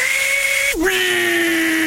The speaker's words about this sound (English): Table saw.